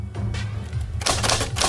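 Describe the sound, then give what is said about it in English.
Rapid, forceful clacking of an old manual typewriter being pounded on at a kitchen table in an apartment at night, keys struck in quick uneven bursts that grow denser and louder toward the end, over a low steady hum. “Gordon pounds on an old typewriter at the kitchen table.”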